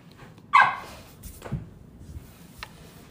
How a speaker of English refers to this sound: This dog is driving me nuts.